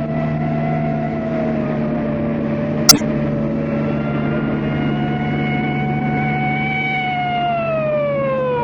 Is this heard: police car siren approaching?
yes